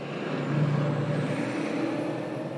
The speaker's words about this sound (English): The question is, don't bikes and cars have to share the road, even a busy one like this?